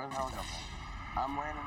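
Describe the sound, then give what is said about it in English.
A helicopter in a video game comes down right beside the player, its heavy, steady rotor and engine rumble droning loudly and without a break, while a voice talks over the noise. “Whoop, helicopter's coming down right beside me.”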